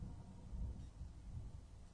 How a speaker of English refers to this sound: Is it thundering outside? And our mics are really picking up some interesting audio of thunder. It has to be storming. It's got to be, yeah. Because that's thunder.